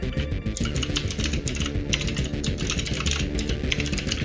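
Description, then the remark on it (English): Rapid, forceful typing on a computer keyboard, a dense stream of sharp clicks and clacks, continuous with no pauses and nobody speaking. “Sorry, I was typing pretty hard, I guess.”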